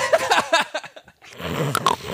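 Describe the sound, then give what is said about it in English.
A person imitates snoring: a quick run of rough, snorting vocal bursts, a brief pause, then a longer raspy, gurgling snore with a couple of sharp catches. “Doing fucking recursive snoring”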